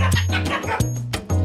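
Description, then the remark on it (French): A dog barks three times in quick succession, each sharp bark trailing into a low, rumbling growl, loud with no talking. “Monsieur Toutou, quand tu grognes, j'ai compris.”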